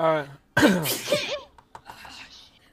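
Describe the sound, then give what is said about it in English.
A single loud sneeze bursts out after a brief voiced intake of breath, followed by a few quieter sniffing and rustling sounds as it fades. “bless you.”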